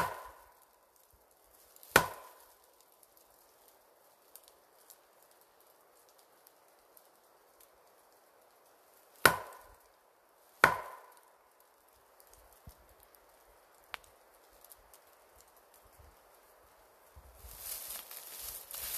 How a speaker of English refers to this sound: I've gotten wood knocks back.